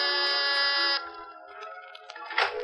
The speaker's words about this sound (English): And then you've got your finger on the door buzzer of Mr. Carr's cloud-high penthouse apartment.